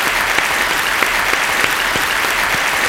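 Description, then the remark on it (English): Steady, loud audience applause fills the whole stretch, a dense wash of many hands clapping as a musician is welcomed to the show, with no voices breaking through. “Thanks for the kind applause.”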